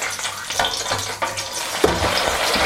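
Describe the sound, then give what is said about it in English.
Steady, loud crackling sizzle of fries frying in hot oil after the fryer basket is dropped in, a dense hiss with rapid popping and bubbling throughout, rising slightly in intensity near the end. “Once they're evenly spread, drop the basket down into the oil.”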